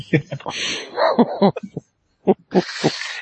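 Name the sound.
dog barking and whimpering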